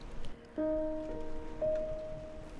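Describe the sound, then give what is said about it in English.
Heavy rain drums steadily on the roof of a boat, a dense, continuous patter, while two sustained tones briefly sound over it and fade. “I can hear the rain hitting hard against the roof of my boat.”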